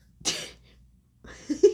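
A sharp cough bursts out, followed after a short pause by a strained, raspy cough with a hoarse, wheezy catch, as someone chokes on air.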